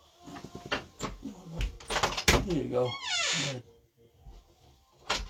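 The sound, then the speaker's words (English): A door is unlatched and opened to let a cat out, with a series of knocking clunks and rattles, then a short creaking, wavering squeal; a person says a few words briefly over it. “Cat wanted to go out.”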